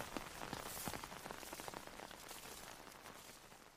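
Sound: rain falling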